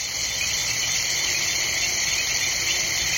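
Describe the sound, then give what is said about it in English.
A dense, unbroken night chorus of frogs, insects, hippos, bats and other night creatures along the banks of Kenya's River Mara, recorded by an artist: a shrill steady shimmer of chirring that fills the whole scene at an even, fairly loud level, with no voices present. “… recorded this chorus of frogs, insects, hippos, bats, and other creatures of the night for his CD, ….”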